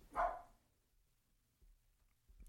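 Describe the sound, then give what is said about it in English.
A single loud dog bark near the start, then mostly quiet with faint low rumbles and a soft noise at the very end. “The dog's barking.”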